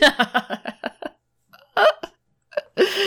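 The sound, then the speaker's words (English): A pet pigeon named Nuggie calls: a quick run of short, throaty notes, then after a pause a few louder, longer squawks, with no talking. “Oh my god, I love pigeons.”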